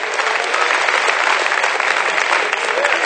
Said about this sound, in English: Somebody clap your hands and thank the Lord that you have put yourself underneath the rubric of the scripture.